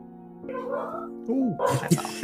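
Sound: dog vocalizing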